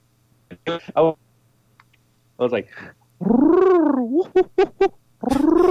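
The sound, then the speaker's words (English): A person imitates bird calls with their voice: short chirpy bursts, then a long warbling, swooping whistle-like call and quick staccato yelps, loud with brief pauses between. “Yeah, I was just making stupid bird calls, and it was an example of the bird call that you'd do.”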